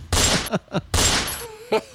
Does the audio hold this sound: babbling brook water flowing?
no